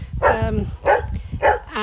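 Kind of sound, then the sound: animal, dog barking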